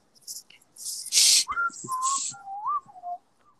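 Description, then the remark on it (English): A person whistles a short, wavering run of notes, with breathy hissing bursts mixed in at the start, and no talking. “There we start with the whistling.”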